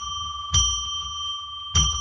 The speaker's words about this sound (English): Let's ring a bell 3 times to declare sacred space. Well, that didn't sound very good. So let's not count that one.